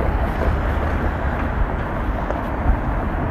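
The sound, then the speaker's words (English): A steady wash of street traffic noise on a street with tram lines, a continuous low rumble of passing vehicles filling the whole stretch without pauses and with no voices. “Hope the traffic noise isn't too bad here.”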